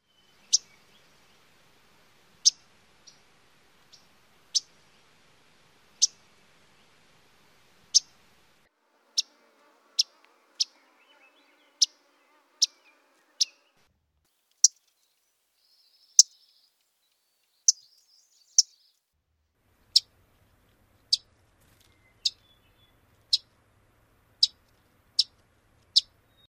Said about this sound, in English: Let's play that one more time. First the yellow-rumped Audubon's, then Myrtle, then McGilvery's, and finally Wilson's.